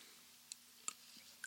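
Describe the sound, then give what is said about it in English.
Someone takes a quiet sip of water: a few small, wet mouth clicks and a soft swallow spread over a second and a half, with no talking. “Just took a nice little sip of water”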